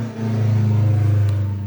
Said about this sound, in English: Did you hear that? That little car go by? Fuck, that was the loudest car that's ever gone by my office. Jesus.